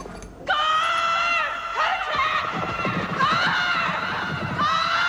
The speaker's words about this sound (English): Fortunately, it's going to come back to them because Canary has some magic screaming power and the twins can hear her.